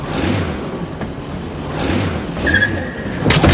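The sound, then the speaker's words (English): A remote-controlled car whirs and revs as it drives off, steered by a finger drawn slowly across the remote's pad. Its motor surges in pulses with a brief high squeal partway through, steady for a few seconds, with no talking. “Now, draw your finger very slowly across the pad to drive the car.”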